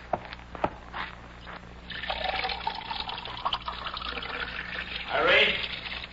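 Water is poured into a drinking glass in a steady trickle lasting several seconds, its pitch rising toward the end as the glass fills, after a few faint clicks at the start.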